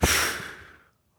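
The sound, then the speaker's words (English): A single heavy, forceful exhale, like a hard breath pushed out through the mouth, loud, fading over about a second into silence. A voice is imitating breathing hard. “That word means breathing hard.”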